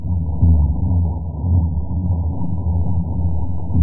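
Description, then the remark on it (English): A dense underwater chorus of spawning fish during the spawning season, reaching 165 decibels, low booms piling one after another into a continuous droning rumble, loud and steady, like a boat's propeller churning. “Yeah, it almost sounds like propellers from a boat. And it's just this, you know, one boom after another.”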